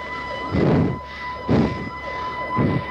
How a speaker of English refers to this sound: Sirens now coming up. I'm watching, see what it is. More squads.